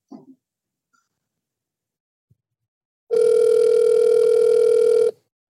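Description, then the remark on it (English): After near silence and a faint brief noise, a loud steady telephone tone sounds alone for about two seconds, like a dial tone or a single ring heard through the handset, as a phone call is being placed, then stops. “Let me call her. Bear with me one sec.”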